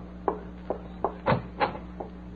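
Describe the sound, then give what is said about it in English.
A cottage door being opened for visitors: a quiet run of about six wooden clicks and knocks from the latch and handle, unevenly spaced, over a steady low hum with no voices. “You open the door for them.”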